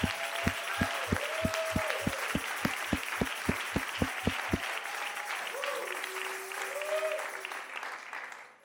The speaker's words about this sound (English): Come on, everybody, clap your hand.